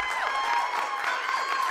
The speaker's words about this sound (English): I think everyone should join me in giving Beatrice a round of applause.